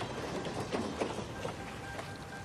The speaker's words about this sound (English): To get that last little piece with the train coming past McNulty, Dominic actually had to stand on the tracks.